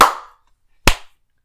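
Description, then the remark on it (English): A group claps together in unison, two sharp, crisp claps separated by a pause of nearly a second, each ringing out briefly before silence. No voices are heard. “We all clap, goddammit.”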